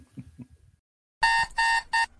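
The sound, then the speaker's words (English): An alarm clock blares three loud, buzzy electronic bursts in quick succession, each a harsh harmonic tone, following a brief faint low murmur and a moment of silence, waking someone up in the morning. “Nothing like waking up to crying kids, hungry pets, and an angry alarm clock.”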